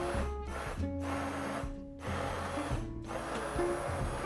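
A blender whirs through soup with a loud, steady motor drone. Its pitch shifts in stages, and the whine briefly eases several times before surging again, with no talking.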